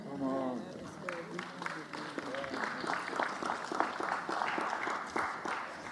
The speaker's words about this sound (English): I'm almost done. Because I get the golf claps at the end.